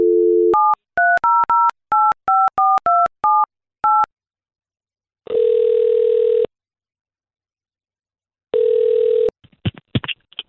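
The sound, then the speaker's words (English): A dial tone gives way to a quick run of about eleven touch-tone beeps as a woman's phone number is dialed, followed by two long electronic ringback tones and a clatter as the line is picked up. “Let's give her a call right now.”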